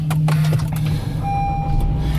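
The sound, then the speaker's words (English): A small car with a gigantic muffler roars by, a steady, throaty low rumble droning loudly and continuously throughout, heard from inside another car, with no one talking. “Oh, some asshole with this gigantic muffler. Some dork's driving a little wiener car. You can hear him even inside my car now.”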